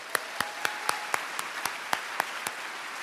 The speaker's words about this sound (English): can we have a round of applause for our friends at KEXP?